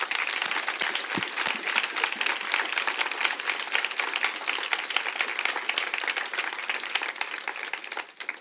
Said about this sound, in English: So thank you for running your race well and giving us a great example of folks just ahead of us to look at and chase after and follow. Can you give them one more round of applause?